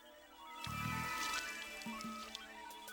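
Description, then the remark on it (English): Water being poured, starting abruptly after a short pause and continuing as a steady, sloshing trickle over a faint background hum. “If you disconnect the electrodes, I'll apply the water.”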